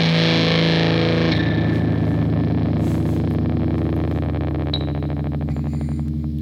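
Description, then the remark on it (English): A loud electric guitar played through a fuzz distortion pedal, its thick, buzzing chord sustaining steadily for several seconds with a gritty, saturated edge and no voices. “Yeah, so let me hear that distortion”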